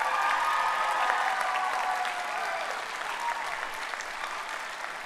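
An audience applauds steadily to congratulate four musicians, a dense wash of many hands clapping at an even level throughout, with a faint murmur of voices mixed in.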